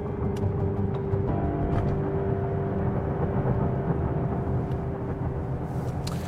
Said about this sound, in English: So, a few weeks later, I'm in the car heading to Roseville.